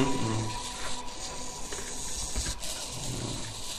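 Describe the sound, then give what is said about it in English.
Servo motors whir and buzz steadily as the arm of a kinetic sculpture moves, the sound coming only from the motors' movement: a continuous mechanical hum with faint tonal whine that shifts slightly in pitch, heard alone without voices. “Those servo motors, they usually make like a lot of sound depending on how fast this will move the arm on the motor.”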